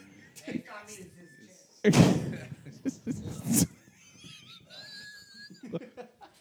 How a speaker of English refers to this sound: You fucking around, hit that wall again one more time.